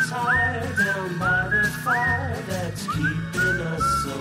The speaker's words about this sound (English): You swear to God that's you whistling?